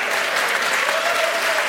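A crowd claps steadily and loudly, a dense wash of applause that holds even throughout, with a faint cheer or whoop rising briefly within it.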